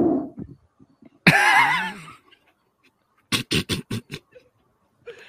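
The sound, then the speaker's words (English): A fart forced through a long rubber hose comes out as a loud, wobbly, buzzing squeal lasting about a second, followed after a pause by a quick burst of five short, sputtering blasts. “I'm more interested to hear how that sounds at the other end. Will it be higher or deeper? Going through a long rubber hose.”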